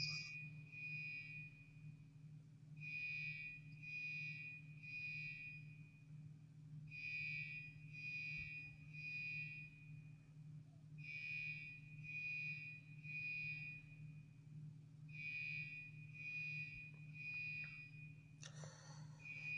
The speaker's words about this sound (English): Here, I wish they'd turn off that damn alarm.